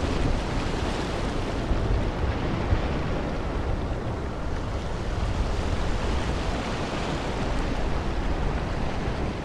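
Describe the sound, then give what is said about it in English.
Steady ambience aboard a ferry at sea from Tallinn to Helsinki: a continuous, fairly loud wash of wind and churning water over a low engine rumble, unbroken throughout with no voices. “Now, one of the joys of sitting on the boat to, the boat from Tallinn to Helsinki is you never know who you're going to bump into.”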